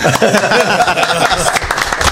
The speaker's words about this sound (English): Applause.